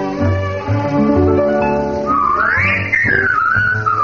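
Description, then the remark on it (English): A band plays a bright tune, and partway through a clear whistled melody rises over it, sliding smoothly up and down in pitch, loud, with no talking. “With the Whistler's song.”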